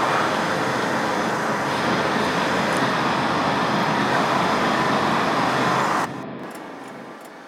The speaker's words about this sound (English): However, I've grown tired of having to edit out the road noise. I don't mind the traffic so much, but the road noise is a problem.